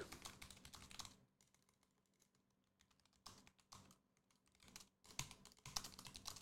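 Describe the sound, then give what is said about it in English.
Bursts of rapid computer keyboard typing as someone types a poll, fairly loud, with clicky key presses coming in several quick flurries separated by brief pauses. No one speaks. “I'm typing the poll right now.”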